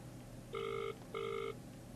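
A telephone rings twice in steady electronic bursts, each about 0.4 seconds long with a short gap between, clear and fairly close over a low background hum. No one speaks.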